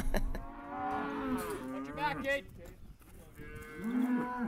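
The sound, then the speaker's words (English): Several cattle at a branding moo in overlapping, drawn-out calls, higher-pitched calves awaiting branding and castration and deeper-voiced mother cows looking on, fairly loud, with faint background activity of at least a dozen neighbors helping as the sun rises. “There's a crescendo of mooing as calves await their turn for branding and castration, and the mothers look on.”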